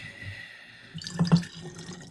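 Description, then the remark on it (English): A short pour of more sake into a cup, with a couple of soft gurgling splashes in the middle and a faint trickle before it trails off; no one speaks. “pours more sake.”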